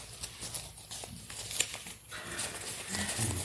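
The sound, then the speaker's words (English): Crumpled paper crinkles and rustles as it is pulled out of a sleeve, with scattered crackling bursts and soft fabric-like scraping, steady for a few seconds with no voices. “And I reached in my sleeve, and there was a piece of paper in there.”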